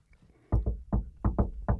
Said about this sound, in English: What if you just were a guy who had a, yeah, like, I'll go to a door if I knock a door, I'll give a funky little knock.